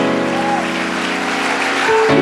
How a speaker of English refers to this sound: Let's continue to clap our hands unto the Lord and give Him praise tonight.